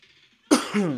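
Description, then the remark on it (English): A single sharp cough bursts out of near silence, rough and throaty, trailing into a brief voiced rasp like a throat being cleared. “All right, I'm coughing a lot.”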